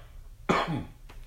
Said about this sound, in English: Take a drink. You're going to cough on the podcast? Sorry. Take a drink.